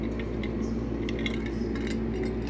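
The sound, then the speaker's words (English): A glass clinks lightly several times at irregular moments as someone drinks water, small bright taps over a steady low hum, with no one speaking. “Excuse me, I had to get a drink of water.”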